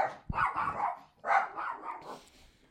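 Two dogs, Bella and Otto, bark in two quick rough bursts, each a flurry of overlapping mid-pitched woofs that lasts under a second, with a short pause between and no talking.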